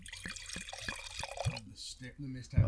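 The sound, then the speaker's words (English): Wine glugs out of a bottle into two glasses in a dual pour, a quick run of rhythmic gurgles over a steady splashing hiss, fairly clear, with some low voices murmuring near the end. “Oh, we got a dual pour.”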